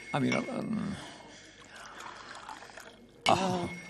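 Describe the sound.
Water pours steadily into a glass for a man to drink, a soft splashing trickle lasting a couple of seconds, with brief voices speaking just before and right after.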